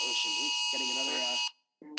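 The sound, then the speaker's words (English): A phone's emergency warning alert, received while driving a road through a remote coastal valley during heavy rain, sounds as a loud, steady, high-pitched electronic tone over a speaking voice, cuts off abruptly, then after a brief pause starts up again. “Getting another warning. Got to turn my phone off here.”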